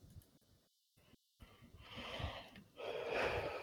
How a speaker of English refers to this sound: Yes? Oh, that was just me breathing. Okay. That sounded like you were just going... I wasn't about to gripe. I was just breathing. I'm having a little bit of asthma these days.